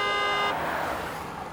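A loud, close car horn blares for about half a second, then cuts off into the rushing noise of a vehicle passing nearby, with no one speaking.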